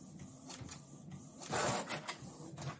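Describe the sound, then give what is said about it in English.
A printer prints out the outline of a drawing, feeding a page with mechanical whirs and short clacking pulses, swelling into a louder grinding rush midway before settling back into steady motor hum. No one speaks. “How long does it take to print the outline out?”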